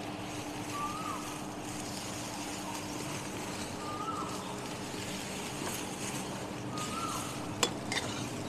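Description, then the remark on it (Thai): A steady, moderate sizzling hiss of garlic stir-frying in an iron wok, not a Teflon pan, with a few soft spatula scrapes spaced out and one sharp metallic clack near the end. No voices. “ฟังเสียงมันไม่ร้อนเลยนะ ใช่ฉันก็ว่ายังไม่ร้อนนะ”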